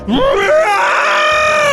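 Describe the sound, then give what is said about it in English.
A monstrous ant-human creature's anguished scream, voiced by a person: a single loud, strained cry that climbs from a groan into a sustained, wavering shriek lasting nearly two seconds. “It looked around, eyes bulging with panic, and opened its mouth in a scream straight out of my worst nightmares.”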